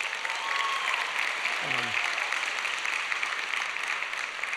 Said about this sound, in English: y'all are throwing me off by clapping. That's so good. Keep it up. It's exciting.